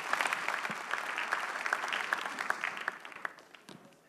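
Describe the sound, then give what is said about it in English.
A church audience applauds steadily to welcome a man testifying of deliverance from motor accidents, many overlapping hand claps forming a dense, bright patter that holds for about four seconds and tapers off slightly toward the end. “Please encourage him with a clap.”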